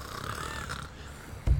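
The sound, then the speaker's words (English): A person imitates snoring with the mouth closed: a steady nasal rumble lasting over a second, ending in a short, louder low snort. Fairly quiet, with no talking. “I snore with my mouth closed.”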